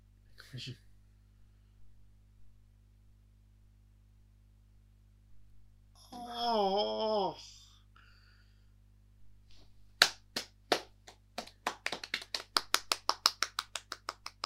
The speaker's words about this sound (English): Stop doing that, start clapping.